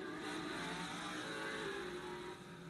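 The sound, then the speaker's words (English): A truck engine in a Roblox racing game roars and revs continuously, loud, with a dense, steady growl and slight pitch shifts throughout, no voices. “I'm gonna drive one of the trucks.”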